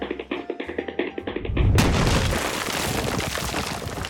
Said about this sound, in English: Couldn't you use the door instead of running straight through my wall? There was no time!